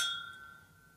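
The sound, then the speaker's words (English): Drinking glasses clink once in a toast, a quiet, bright ding whose high ringing tone slowly fades over about a second, with no talking. “You guys ready? They're pretty close. Let's go. Cheers.”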